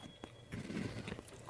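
A crunchy bite into a biscuit dipped in milk, followed by a few soft chewing crackles and a louder crunch at the end; no one speaks.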